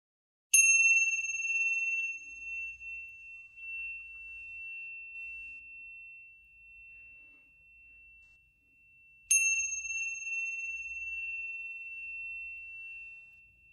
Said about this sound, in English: So let's take a minute for that. I'm going to ring the bells.